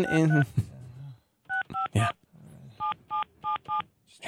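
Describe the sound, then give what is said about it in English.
Clear touch-tone telephone dialing while placing a call: a quick group of three keypad beeps, a short pause, then four more evenly spaced, following a brief stretch of voice at the start. “Just trying to get this guy on the phone, but...”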